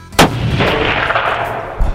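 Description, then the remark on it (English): A single sharp rifle gunshot fired at a big buck deer during a hunt cracks out, followed by a long rolling echo that slowly fades, with a faint thump near the end. “I was able to put a good shot on this big buck and it looked like a tracer round.”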